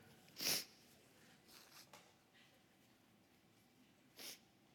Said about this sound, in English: Can someone bring me a tissue? It's vulnerable. I'm just sniffling a lot.